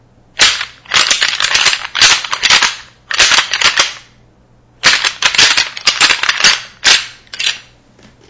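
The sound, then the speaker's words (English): Antlers rattle and clash in loud bursts of sharp, rapid clicking and grinding, broken by brief pauses and one longer gap midway before the clattering resumes, a full rattling set used to call deer. No one speaks. “let's say you're going to go out there and it's the right time of year and you're going to rattle a full rattling set where you're going to stop and not do anything else for maybe another 20 minutes might be just like this.”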